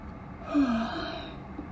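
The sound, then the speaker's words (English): A single drawn-out yawn from one person, a breathy inhale swelling into a low voiced groan that trails off into a long, soft exhale. It is fairly quiet, with no talking. “I bet I made you want to yawn too, right?”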